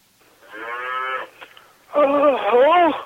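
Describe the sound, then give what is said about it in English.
Two drawn-out cow moos in a barn, with no talking: a steadier first call, a short pause, then a louder second moo that wavers up and down in pitch. “Hey, I'm out here in the barn.”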